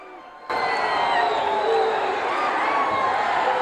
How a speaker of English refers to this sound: The wooden parkade floor here in the Agricultural Hall of Hamburg, PA. Crowd are loving that.